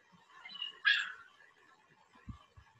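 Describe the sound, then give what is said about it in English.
A puppy, playing around, gives a short, high-pitched yip that trails into a brief whine, followed by a couple of soft low thumps in otherwise quiet surroundings. “Man, you know that dog is going to be crazy when it gets older.”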